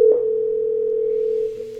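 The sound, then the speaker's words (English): A steady electronic telephone ringing tone of a call about a 1970 Buick Skylark for sale holds one mid-pitched hum without a break, fairly loud and even, easing slightly softer near the end. No one speaks. “I feel like the jerky boys every time it rings.”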